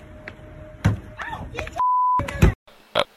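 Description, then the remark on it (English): A few heavy, dull thumps of a fist punching a car, with girls in the back of the car keeping it from moving, spaced irregularly, with a steady electronic beep sounding briefly between them and a faint low hum underneath. “Okay, that thump is literally the girls in the back of the car not allowing the car to move.”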